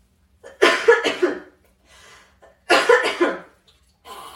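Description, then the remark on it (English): A harsh, lingering COVID coughing fit comes in two bursts of several rapid hacking coughs each, separated by short, raspy intakes of breath, with no talking. “That COVID cough, I guess, was lingering for months.”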